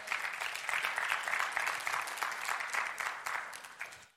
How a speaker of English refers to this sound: Come on, somebody, amen. That's worth giving the Lord a great clap offering right there.